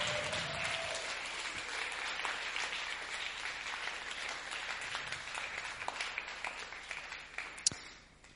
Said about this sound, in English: Keep clapping